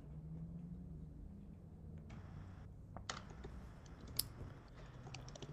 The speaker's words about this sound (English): Another easy way to do it is just use the arrow keys and just count how many times you click. So 25 feet is 5 squares.